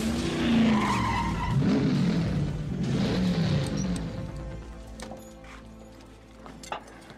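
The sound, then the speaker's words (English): A stock car roars past at speed on a fast lap timed at 31 seconds flat, its engine note sweeping and shifting, with tires skidding and squealing before the sound fades into a quieter rumble with faint clicks. “That was fast. Yeah? 31 flat. That's good enough to take the pole in the last race here.”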